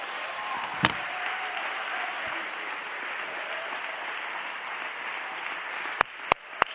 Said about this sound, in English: I'll just clap my hands